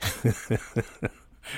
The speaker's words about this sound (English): Sorry for my coughing, but that's the reality here.